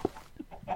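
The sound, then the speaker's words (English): Video game chickens in an automatic chicken farm cluck in a few short, irregular bursts over less than a second, fairly soft, with no one speaking. “This is a, I think it's an automatic chicken farm.”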